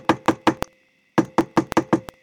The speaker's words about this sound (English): Oh, okay. Let me knock on the door.